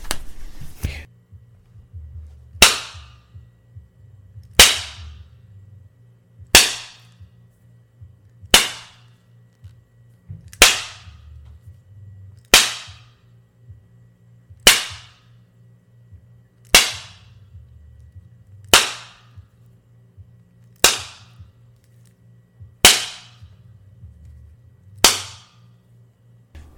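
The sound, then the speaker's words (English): A whip cracks sharply about a dozen times at a steady pace of roughly one lash every two seconds, lashing a woman tied to a fence post. Each loud snap fades quickly over a low, constant hum. “Vesta shrieked as the lash cut into Kitui's flesh.”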